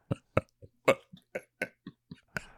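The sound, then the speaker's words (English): A rapid series of short, sharp coughs, around ten in under three seconds, fairly loud, coming in uneven clusters with brief gaps and no talking. “And why are you coughing?”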